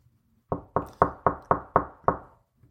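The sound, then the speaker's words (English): Seven firm knocks on a door in a quick, steady rhythm, fairly loud, with no voices, then a brief faint shuffle afterward. “I guess we'll just knock on the door then.”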